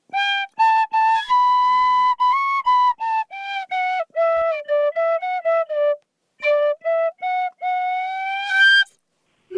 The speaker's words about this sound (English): Lou Logan on the Irish penny whistle. On the tin whistle, yes.